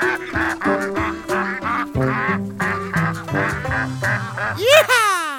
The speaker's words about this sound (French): Bravo! Mission accomplie. Les canards sont rassasiés.